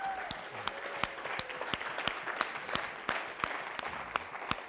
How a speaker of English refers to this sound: Y'all give the worship team another round of applause.